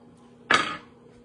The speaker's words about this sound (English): All right. You can hear it popping and sizzling.